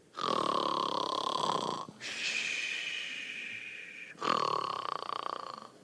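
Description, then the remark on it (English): A person loudly imitates the biblical Jonah snoring fast asleep in the ship, three drawn-out rasping snores, the first and last deep and guttural, the middle one higher and whistling, with no other sounds. “Jonah's snoring away.”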